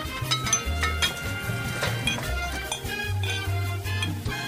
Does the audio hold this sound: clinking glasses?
yes